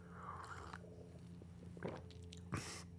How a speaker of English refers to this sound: Hold on, more coffee.